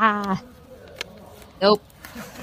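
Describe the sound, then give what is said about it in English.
Two short, nasal animal calls, like a horse or donkey, one at the start and a louder one later, separated by quiet with a faint click between them. “Nope. That's a horse.”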